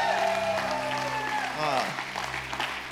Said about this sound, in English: You guys in the East, put your hands together for the Valley. You guys here, put your hands together for East.